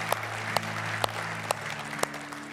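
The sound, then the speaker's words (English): Applause for the online community, a slow, even run of about six sharp claps, roughly two per second, over a steady low hum. Each clap sounds crisp and isolated, and no one speaks. “Let's give it up for our online community tonight.”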